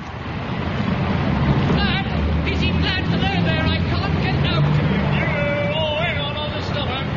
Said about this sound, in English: actually on duty during the rush hour in the high street of Weston-super-Mare.